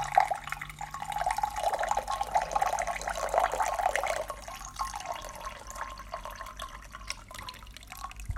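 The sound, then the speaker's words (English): Sencha tea, steeped one minute, streams steadily from a small kyusu teapot for about four seconds, a soft splashing trickle, then tapers into quieter dribbles and scattered drips. No one speaks. “I'm going to go ahead and pour that out.”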